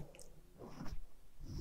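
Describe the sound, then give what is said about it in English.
Someone drinks from a water bottle: quiet wet mouth sounds and a soft gulp or two, with a brief louder swallow near the end. No talking. “I do need to switch my resting thing from my phone because I need to drink out of my water bottle.”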